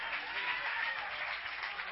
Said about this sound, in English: Clap your hands one more time as you're being seated.